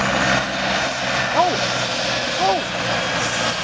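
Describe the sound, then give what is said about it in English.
A steady, loud rotor-like roar fills the whole stretch, the drone of a helicopter overhead, with two brief rising-and-falling vocal exclamations cutting through it. “Yeah, I told you there's more than one helicopter.”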